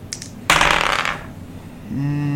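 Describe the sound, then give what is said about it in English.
Dice clatter onto a hard tabletop in one sharp, rattling roll that tumbles and settles over about a second, followed by a low humming tone. “I think I rolled the wrong dice.”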